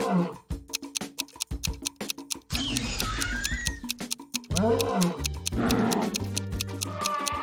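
Lions let out several deep, rumbling roars that swell and fade, their pitch bending up and down, over a steady crackle of sharp clicks. No one speaks.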